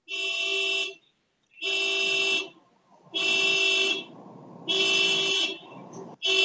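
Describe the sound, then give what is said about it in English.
A car alarm honks in long, steady blasts, five of them with short gaps between, loud and harmonic against low background rumble, heard from outside; it is the car of someone living in the same building, going off for the second time that night. “So someone in my someone who lives in my building, their car, their alarm goes off every once in a while, and that's the second time it's gone off tonight.”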